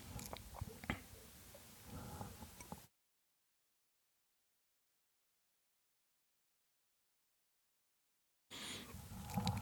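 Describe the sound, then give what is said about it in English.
Wet mouth sounds of someone sipping water and swallowing for a few seconds, followed by a long stretch of silence and a brief return of similar noises at the end. “So with that being said, I'll take another sip of water.”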